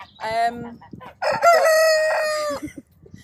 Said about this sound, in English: on agricultural land, it's a cockerel noise here and there isn't a problem. Plus we've been doing everything we can to try and reduce the noise, blacking out the cockerel's windows, moving them, not letting them out till a bit later in the day.